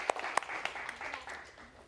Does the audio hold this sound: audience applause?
yes